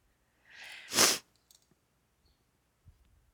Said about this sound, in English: Sorry, I'm sniffling.